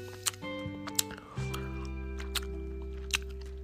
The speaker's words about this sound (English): Although, you know, I shouldn't be chewing gum. That's so rude of me.